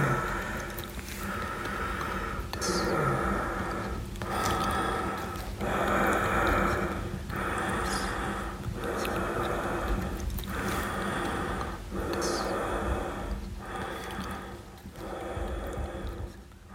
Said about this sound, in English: A short time later, the labored breathing returned.